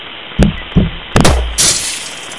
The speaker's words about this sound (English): Oh shit, just my luck! That bullet went right through the windshield of my cruiser!